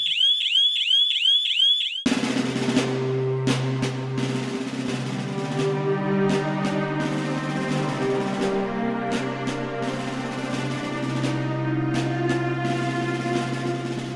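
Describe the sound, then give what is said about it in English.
A loud electronic alarm sounds at 3:30 in the morning, warbling in rapid, repeating rising chirps for about two seconds, then cuts off abruptly as sustained music takes over. “I'll suspend alarm and tell everyone to hit the briefing room.”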